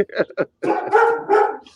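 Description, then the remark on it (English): A dog barks loudly: a few quick, sharp yaps, then a longer stretch of strained, whiny barking that carries on for over a second. “And there's the dog.”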